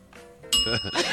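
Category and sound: signal or alarm, bell ringing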